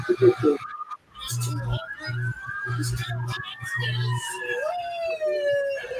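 Presidential police escort sirens wail in steady, overlapping tones that slowly rise and fall, joined by a loud, rhythmic low honking pulse that repeats several times before dropping away.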